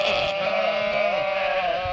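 A goat lets out one long, loud, wavering bleat that fills the whole moment, nasal and quavering, with no talking.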